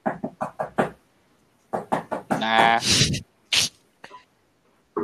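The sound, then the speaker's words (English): A quick run of five knuckle knocks on a hollow aluminum desk, then a second burst of raps, followed by a loud vocal exclamation and a few scattered sharp noises. “It's got like metal to it. It's got reverb. Yeah, it's like aluminum. It's aluminum. Aluminium. It's a hollow desk.”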